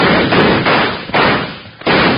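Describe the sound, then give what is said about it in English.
A rapid series of four loud gunshots, each a harsh, booming burst with a lingering noisy tail that nearly runs into the next; no one speaks. “Shoot, you fool.”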